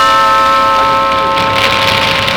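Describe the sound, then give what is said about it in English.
Steady, dense hiss of rain falling continuously, fairly loud, with a faint steady tonal hum running underneath and no voices. “Is it raining now?”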